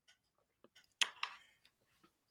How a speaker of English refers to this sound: No, it's not a tough one. I was just swallowing water.